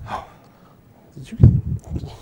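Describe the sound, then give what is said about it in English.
Heavy, labored breathing from a werewolf monster, with a sharp gasp followed by several rough, snorting pants in quick succession, fairly loud against a quiet background. “He's breathing hard over here.”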